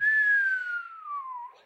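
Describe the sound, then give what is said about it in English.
A single clear human whistle, a descending tone gliding smoothly downward for about a second and a half, fairly loud, with no talking. “There's your whistle.”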